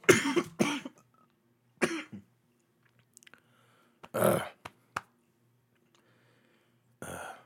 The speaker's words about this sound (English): Smoker's cough.